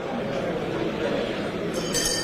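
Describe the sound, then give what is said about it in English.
Steady, noisy background, then near the end a short, bright metallic ding rings out once: the quiz show's timeout bell, sounded when a contestant fails to answer within 3 seconds of ringing in, high-pitched and quickly cut off. “Once you ring the bell, you have 3 seconds within which to provide an answer, or you hear this bell.”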